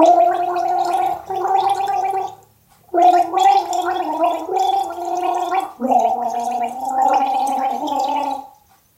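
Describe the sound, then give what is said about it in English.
A voice hums a slow, steady melody through a mouthful of gargling water for others to guess the tune, the tune bubbling and rattling in three long phrases separated by brief pauses for breath. “Because you're struggling, I'll just hum it normally, see if you get it without the gargle.”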